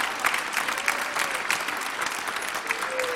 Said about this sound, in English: And as we do that today, can we just rejoice? Can we clap our hands and just thank the Lord for His blessings?